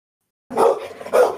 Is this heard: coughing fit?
no